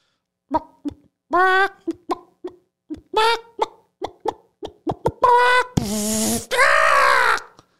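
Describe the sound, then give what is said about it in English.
A person vocally imitates a chicken being electrocuted: a run of short, clucking squawks and yelps, then two loud, harsh, buzzing screeches at the end, with no other sounds. “A chicken being electrocuted.”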